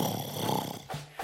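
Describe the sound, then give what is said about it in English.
A voice imitates a single drawn-out snore, a rough rattling inhale followed by a brief nasal snort, fairly loud with no other talk. “His head passes out straight on the desk, and he starts snoring.”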